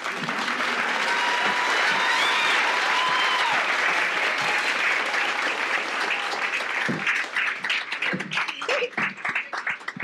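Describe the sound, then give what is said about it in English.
Sustained audience applause, a dense steady wash of many hands clapping that thins into scattered, uneven claps near the end. A few faint whoops and cheers rise through it. “I know you just clapped”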